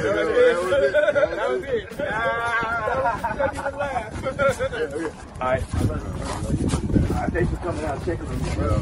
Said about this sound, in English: Wow. That was serious. The weather is rough there. I could hear the weather coming through the phone. Oh, it's just windy. They're in the weather. Yeah. It's windy.